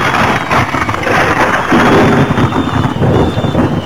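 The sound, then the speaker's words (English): A thunderstorm in Memphis, with tornado warnings in effect, roars steadily with heavy rain pouring down and deep rumbling thunder underneath, loud throughout, with no voices. “Ladies and gentlemen, it's a bad day in Memphis. Thunderstorms, tornado warnings. It's rain like all get out.”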